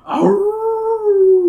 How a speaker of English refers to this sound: You and the twins hurry down the path to the palace. At once you hear the terrifying howl again.